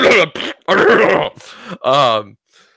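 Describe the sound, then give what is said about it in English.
A loud cough made of a few rough bursts, like forced throat clearing, ending in a short voiced grunt before quiet. “you just did the fart that you do, or the cough that you do when you fart.”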